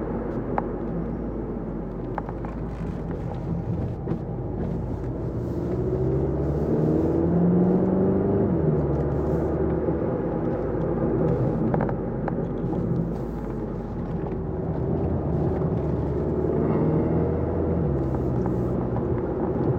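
A 2015 Volkswagen Golf GTI, a front-wheel drive car, on the move, its engine a steady low drone with road rumble underneath, rising in pitch through two smooth accelerations. No one speaks.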